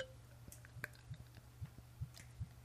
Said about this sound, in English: So let's pour this beer.